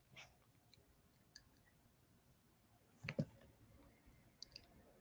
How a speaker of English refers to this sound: If you're listening to the podcast, I apologize. I am typing right now so that if you're watching the video, you have the notes here.